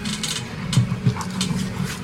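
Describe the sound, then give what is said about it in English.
A small shih tzu dog growls continuously, a low rattling rumble with two brief louder surges near the middle, and no one speaking. “Does this dog appear angry, this shih tzu?”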